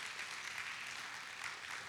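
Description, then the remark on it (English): A crowd applauds: dense, steady clapping that stays at an even, moderate level for about two seconds, with no voices over it. “Yeah, you can give him a good round of applause.”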